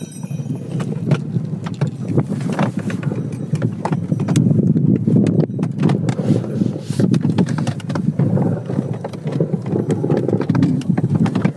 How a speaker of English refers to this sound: We're literally dashing through the snow in a one-horse open sleigh. That's true. Through the fields, snowy fields of Norway. You hear the horse bells? Where I grew up. There it is.